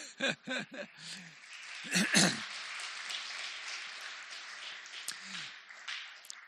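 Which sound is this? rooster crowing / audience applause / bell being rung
audience applause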